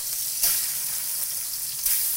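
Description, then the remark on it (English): Steady, bright hiss of a batch of chicken sizzling in hot oil, with two sharper crackling bursts standing out over the continuous frying noise. No one speaks. “Start frying those up.”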